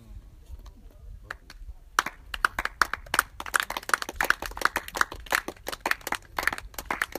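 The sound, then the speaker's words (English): An audience breaks into clapping: a few scattered claps at first, then a sudden burst of many hands clapping quickly and irregularly, loud and sustained to the end. “This is clapping, I'm sure you didn't hear what I said.”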